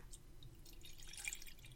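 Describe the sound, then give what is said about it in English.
Decanted South African Cabernet red wine being poured into a glass, a soft trickle of liquid lasting under two seconds with faint splashy drips, quiet and alone without talk. “I'm going to pour it now.”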